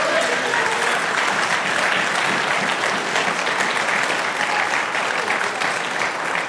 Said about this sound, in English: Come on and give the Lord your best applause.